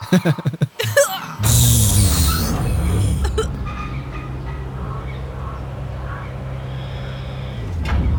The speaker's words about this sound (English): The door opens up quite smoothly and steadily. You can see, although the outside is quite weathered from the sun and sand, the inside is quite well maintained, and there's just a simple metal staircase leading down into a dimly lit room beneath.